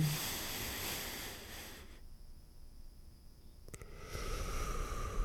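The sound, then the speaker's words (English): Airy, breathy rushes of noise as a person sitting calmly with straight posture breathes into a microphone: a long hissing breath, a brief quieter pause, then another steady exhale, with no talking. “I'm going to try and breathe into the microphone.”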